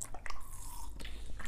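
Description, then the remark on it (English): Someone takes a sip of water: a few soft, wet mouth clicks and a swallow or two, irregularly spaced over a low steady hum, with no talking. “Another drink of water.”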